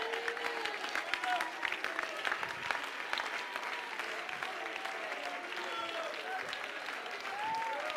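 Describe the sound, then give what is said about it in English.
An audience claps hands steadily throughout in praise of God, a dense, continuous patter of many people applauding, with scattered voices and faint cheers mixed in. “You got a reason to clap your hands.”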